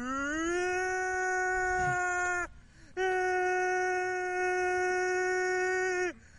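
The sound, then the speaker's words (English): A voice imitates a bad-weather alarm siren with two long, loud, steady wailing tones, each rising briefly at the start and holding for about two and a half seconds, separated by a short pause. “Bad weather always needs an alarm. Needs a siren.”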